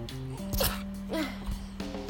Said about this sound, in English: And I keep having to sneeze, so.